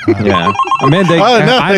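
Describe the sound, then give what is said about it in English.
A telephone rings in quick repeated pulses as a caller phones again, fairly loud, while a voice talks over it almost the whole time. “calling again. Okay, I'm just going to hang up on him.”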